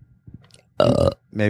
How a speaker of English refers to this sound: And you were giving me shit for coughing. That was just one belch.